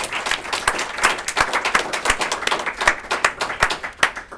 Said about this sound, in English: Let's give our speakers a big round of applause and we'll let them introduce themselves after that loud clap.